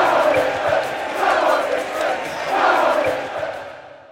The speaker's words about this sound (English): But when the entire crowd is chanting together, that's a whole other challenge.